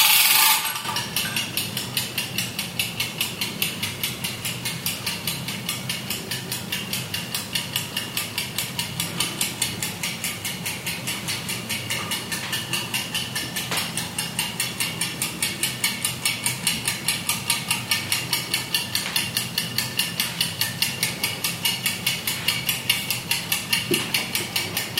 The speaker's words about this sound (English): Okay, let's repeat this, what I just did, in the same order, but with something that I found here in my kitchen. It's a kitchen alarm clock, which sounds quite analog. Here we go.